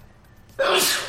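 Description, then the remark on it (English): A single loud sneeze bursts out suddenly after a moment of quiet speech, its breathy hiss trailing off over the final half second. “Bless you. Thank you.”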